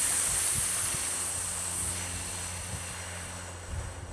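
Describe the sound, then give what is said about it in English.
A long, steady hissing exhale, a voice imitating a snake's hiss during a breathing exercise while massaging an acupuncture point below the shoulder blade, sustained for several seconds over a faint low rumble, with no talking. “And we'll inhale and we'll exhale and make the sound for the lung too, which is like a snake.”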